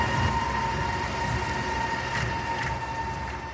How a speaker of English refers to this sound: Brooklyn, New York, South Williamsburg. The JMZ subway runs slower than usual because of quarantine. Still, for a struggling couple and their child, the sound of the elevated subway cars is smoothing, almost swaying.